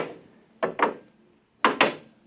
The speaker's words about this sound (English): The door's closed behind us. Try the lock. No, it's no use. Here, let me try. Oh, holy smoke, I can't get it open.